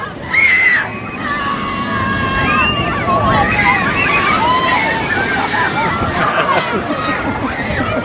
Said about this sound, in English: Here comes the boat. We're going to see if they actually get wet or not.